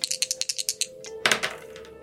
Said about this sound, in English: Roll a percentile dice.